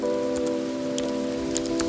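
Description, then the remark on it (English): Mechanical keyboard typing with tactile switches: sparse, irregular, crisp key clicks over a steady, sustained musical drone, with no one talking. “This is a tactile switch.”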